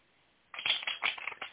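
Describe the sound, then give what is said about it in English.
Tarot cards being shuffled for a reading, a quick burst of crisp, rapid riffling and flapping that starts abruptly after a brief near-silence and continues in uneven bursts, with no one talking. “I hear me shuffling in the background.”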